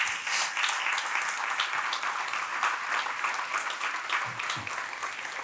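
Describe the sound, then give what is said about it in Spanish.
A crowd applauds steadily in honor of God during a church sermon, a dense wash of many hands clapping at an even, fairly loud level throughout, with a faint voice briefly surfacing near the end. “Dele un aplauso a Él.”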